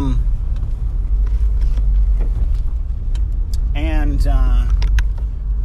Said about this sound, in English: Okay, I'm parking my car.